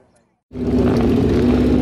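After a brief near-silence, loud car engines suddenly roar in and hold a steady, throaty drone as cars drive into the collecting area.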